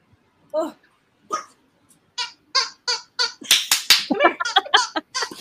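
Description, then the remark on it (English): A puppy lets out short, high-pitched yips and whimpers while trying to play with a person, a few spaced cries at first, then a quick, excited run of yelps. “Sorry, there's a puppy here and he's trying to play with me.”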